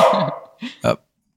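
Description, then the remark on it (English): A dog barks three times: one longer, drawn-out bark followed by two short, sharp ones in quick succession, then silence. No one speaks. “My dog is barking, sorry.”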